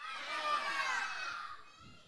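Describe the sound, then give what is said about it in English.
An audience, kids included, shouts out their one word each all at once on the count of three, a loud, jumbled burst of overlapping yells that holds steady for about two seconds before fading slightly. “So on the count of three, I want you guys to yell it out, okay?”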